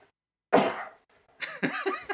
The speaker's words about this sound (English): I had to mask my cough. I thought I had like a tea towel set nearby, but turns out I've only got a Mickey Mouse teddy